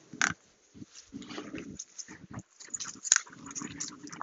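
A dog makes snuffling, grunting noises in irregular bursts, with a couple of sharper snorts standing out. No one speaks.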